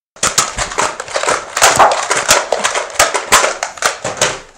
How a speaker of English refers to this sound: Would you please, for the love of God and your own body, hold the hammering?